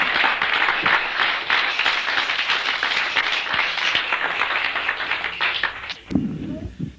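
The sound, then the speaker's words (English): A crowd applauds steadily for about six seconds for a woman introduced as the speaker's wife, a dense wash of many hands clapping at once, before it fades and a voice begins speaking near the end. “Here's my wife. Give her a clap.”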